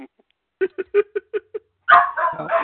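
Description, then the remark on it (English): A dog lets out a quick, evenly spaced run of six short barks, then breaks into louder, longer, rougher barking right at the end. “Did you notice that she didn't bark when you introduced Dave, but when you started talking again?”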